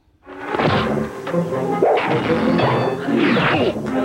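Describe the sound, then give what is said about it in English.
A bird flies into a window cleaned with Windex: a loud smack against the glass, followed by a dense, rattling clatter that rings on for several seconds with no voices. “And the joke there, and we can play this in a minute, is that Windex gets windows so clean that birds will fly into it, right?”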